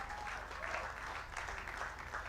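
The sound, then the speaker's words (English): An audience at Sowing Assembly, the Mega Life Center, applauds, a dense, steady wash of many hands clapping that fills the whole moment, with no voices over it. “Clap for yourselves.”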